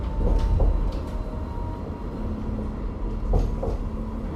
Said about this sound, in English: I do like a good city tram.